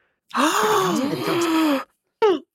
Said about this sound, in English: I wasn't convinced by your gasp. That's better. Ooh, it sounded asthmatic. It sounded a little bit sexy.